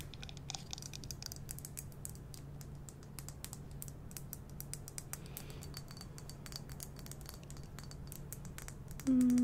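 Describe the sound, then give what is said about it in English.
Gentle hammer taps on a toy to get it ready: many light, quick clicks in an irregular patter over a low background hum, ending with a brief louder steady tone. No one speaks. “Just a couple little taps.”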